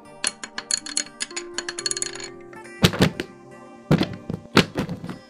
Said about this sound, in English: Her books and pencils started levitating on her table, and her chair started rising. When she noticed her chair and then her hand, she gasped, and everything fell back down on the surface.